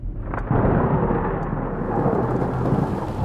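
A heavy, steady roar of rain pours down without pause in a sudden deluge from a darkened sky over a narrow dirt road, dense, with deep rumbling low tones beneath it like thunder. No voices are heard.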